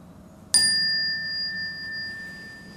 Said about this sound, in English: Normally, in the Chan tradition, we have a handheld chime. We don't have that here, so I'm using this. So it's like, when you hear the bell, you bow down.